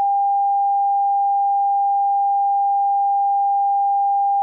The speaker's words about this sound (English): Oh, why are you beeping out me saying shit about journalists that are saying shit about me? This is my show!